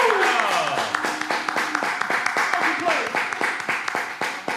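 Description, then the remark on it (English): An audience breaks into steady, dense applause lasting several seconds, sharp individual claps popping through the wash, with a few voices and whoops rising over it. “Clap it up for that.”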